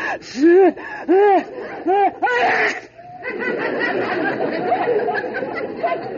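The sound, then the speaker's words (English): Several rising, breathy gasps build up in quick succession before one sharp, explosive sneeze from inside a closet, followed by a steady muffled rustling noise in the background. “That sneeze came from the closet.”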